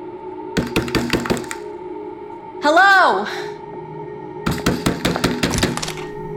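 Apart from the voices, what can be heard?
banging on a door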